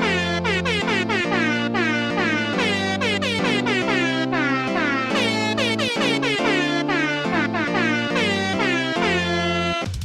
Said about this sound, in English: I'll leave you with my favourite thing about doing the show in December, the festive air horn.